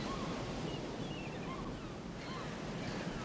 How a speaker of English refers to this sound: You notice how the water creeps in? Even when the tide's out, the water creeps in.